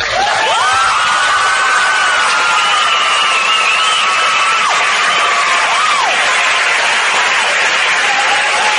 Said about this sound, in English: Well, hold on a second. Let's just listen to a little bit of applause. Yeah. Let's just really soak it in.